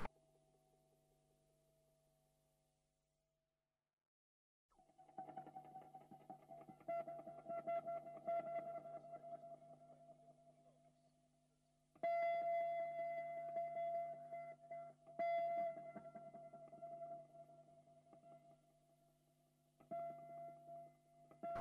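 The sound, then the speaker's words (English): Electric guitar notes tapped and left to ring, smeared by heavy echo into sustained humming tones, with sudden louder swells partway through. No one talks. “just making little funny effects with the guitar and like just tapping it here and there with little echo effects.”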